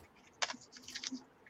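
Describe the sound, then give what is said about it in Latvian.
Quiet, quick keystrokes tap on a computer keyboard as someone types the year 19 into a Google timeline, a short burst of clicks followed by a few lighter, scattered taps, with no talking. “Un ierakstam, ko mēs rakstam 19.”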